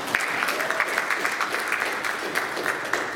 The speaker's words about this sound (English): I think we should clap for them.